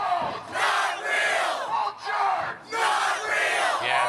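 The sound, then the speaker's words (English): A large crowd at a rally in Missouri about birds being drones shouts and cheers in loud, rhythmic surges, like a chant repeated in three bursts with brief dips between them, and no single voice standing out. “Audio from their latest rally in Missouri.”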